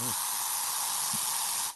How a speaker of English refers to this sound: Oh, yeah. Get that spray tan in there, baby.